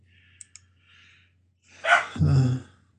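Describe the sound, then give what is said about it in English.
A few faint clicks, then a dog barks loudly at a cat, a sharp burst followed by a rougher, growly second note, with no one talking. “No, dog, you can't bite the cat.”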